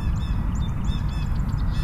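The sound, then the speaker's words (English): Harsh calls of jays and crows ring out over a steady low outdoor rumble, several rough squawks scattered across a couple of seconds. “And there's jays and crows.”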